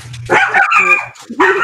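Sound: puppy barking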